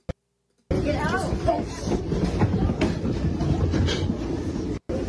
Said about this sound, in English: Meanwhile, goofballs are throwing fireworks in your fucking trains. Here you go.